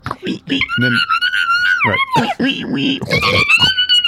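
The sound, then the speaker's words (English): A person imitates a pig with its snout in a bag, snuffling and chomping acorns, mixing high wavering squeals with low snorty grunts in a continuous burst of about four seconds. “And then he pulls out with what you can only imagine is a smile on his face while he's chomping on a jaw full of acorns.”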